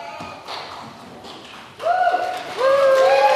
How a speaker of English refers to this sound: which will be greeted with wonderful applause and cheering?